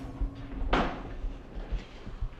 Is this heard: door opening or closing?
yes